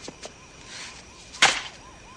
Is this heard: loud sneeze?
no